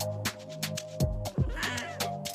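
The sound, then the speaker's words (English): A cat meows twice in quick succession, fairly loud, with short bursts of scratchy noise around the cries. “My cat says thank you so much to everyone for an amazing season 3 of Dirty Girl Podcast.”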